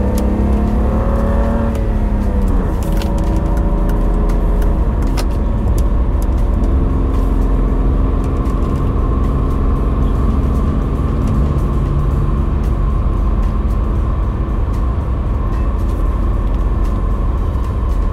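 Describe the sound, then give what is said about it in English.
A car with 54,826 miles on the odometer drives by the entrance to the Bear Mountain Bridge. Its engine runs steadily from inside the vehicle, with a rising whine as it accelerates early on, then a constant low rumble and road noise throughout. “This car is running nice, I gotta say.”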